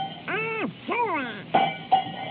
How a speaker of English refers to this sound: Oh, Donald, I said no. Give me that cowbell.